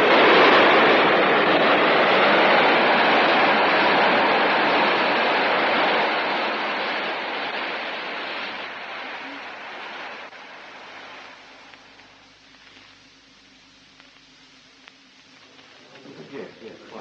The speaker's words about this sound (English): The interference is clearing on the sound channel, sir.